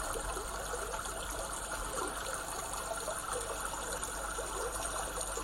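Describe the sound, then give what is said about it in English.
A babbling brook flows steadily throughout, its water trickling and bubbling in a continuous, even wash of sound with no voices present. “Babbling Brook”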